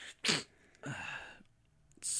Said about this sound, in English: I'm about to sneeze.